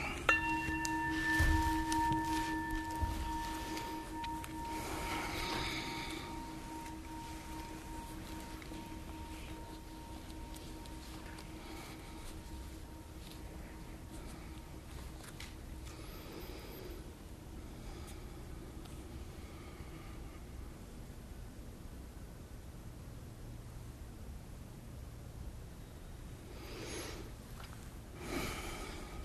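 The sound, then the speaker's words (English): A bell is struck once, its clear ringing tones lingering and slowly fading away over several seconds until only a soft background hiss remains. “The sound of the bell says a little bit about what I think about the ethics of being a chaplain.”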